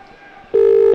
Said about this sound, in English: Tom's dialing the number now on his Nokia N8, and it's going to start ringing.